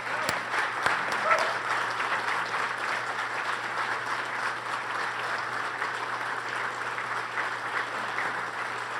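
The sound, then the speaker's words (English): Steady, sustained applause from a large standing audience welcoming Bishop Earl K. Fernandes, the Bishop of Columbus, fills the whole clip, a dense wash of clapping at an even level with no voices standing out, plus a faint low hum underneath. “We'll see if the applause is as great at the end of the talk.”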